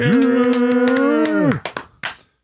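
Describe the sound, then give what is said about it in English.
A small smattering of hand claps over a steady, held voice-like tone that slides down and stops, then a few sharp, isolated claps trailing off. “Best applause in the world.”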